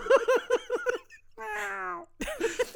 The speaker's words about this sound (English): we have a return of the cat. Yes, we do.